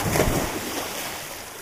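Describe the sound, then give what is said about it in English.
A single splash bursts out at the start as a person jumps over the side of a boat into cold water, then fades into a steady wash of water and wind noise, with no voices. “She pushed past Bee, then jumped over the side of the boat.”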